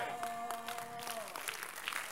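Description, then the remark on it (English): A Christian audience claps for Jesus Christ in a dense, steady patter of many hands, while a sustained musical tone sounds underneath at first and fades out partway through. “The Christians are clapping for Jesus Christ.”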